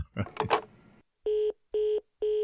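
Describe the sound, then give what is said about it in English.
A telephone number is dialed to call the CEO of the Western Roads Federation: after a short burst of voice, three steady, evenly spaced keypad beeps sound, each lasting about a third of a second, clear and moderately loud. “dropped my call and ran off to ring”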